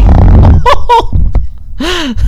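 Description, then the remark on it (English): A loud, wet, sputtering fart deliberately made by a person rumbles, followed by a few squeaky vocal yelps and an exclaiming voice. “For the listeners, one of us just tried to do a fart, and it definitely just sounds like they shit themselves.”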